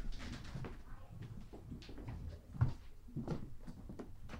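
Big French doors in a museum exhibit being opened into a recreated bedroom of the Wong family's apartment, with soft creaks and rattles of wood and glass, a distinct thump partway through, and quieter handling noises on either side.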